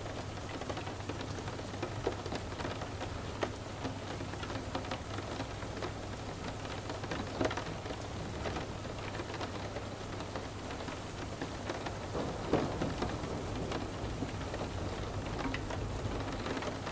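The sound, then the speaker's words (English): Steady rain falls and patters on a surface, a dense, even hiss with scattered closer drops tapping through it, continuous and moderately loud, with a low steady hum underneath and no voices. “Feel the raindrops ease your mind further inside, calming every emotion, every feeling, and every sensation.”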